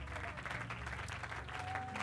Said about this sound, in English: As you clap your hands, why don't you lift your voice? Why don't you give the Lord a shout of triumph in the house this morning?